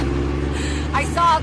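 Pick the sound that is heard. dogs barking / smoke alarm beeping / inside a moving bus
inside a moving bus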